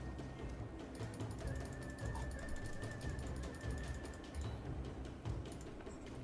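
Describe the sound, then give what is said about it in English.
A digital dice-roll effect on D&D Beyond of many dice rolling together, a dense, continuous clatter of rapid overlapping clicks and rattles that goes on steadily for about six seconds with no one speaking. “That was really loud in my ear. Ow. Just means you shouldn't roll that many.”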